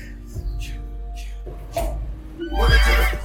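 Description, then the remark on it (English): A horse neighs loudly, a drawn-out whinny rising into a bright, shrill peak near the end, set over a steady low rumble with a few faint breathy bursts before it. “Took that horse power. Oh, yeah. Giddy up, giddy up.”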